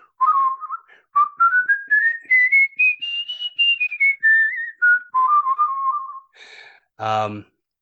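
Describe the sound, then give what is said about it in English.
Someone whistles a tune, the melody climbing steadily then sliding back down, with rapid self-taught warbling trills on several notes, ending with a short burst of voice. “You've got a warble and everything.”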